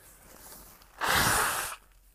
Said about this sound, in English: and blow my nose. There we go.